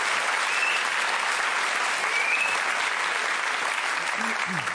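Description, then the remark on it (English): A crowd applauds the people who shared their stories, a dense, even wash of clapping that holds at a constant loud level for the whole stretch, with a faint vocal sound rising briefly near the end. “Can I have a round of applause for all of our people who've given us their stories so far?”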